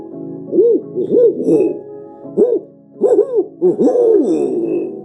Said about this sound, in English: Those who go out and search Bigfoot, they don't know much natural history. So they'll hear a great gray owl or a barred owl, which are very common now.